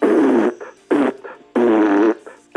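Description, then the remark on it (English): Three loud, drawn-out fart sounds with a buzzy, wavering tone, each followed by a shorter, quieter sputter, with no talking. “Cut it out with the fart sounds.”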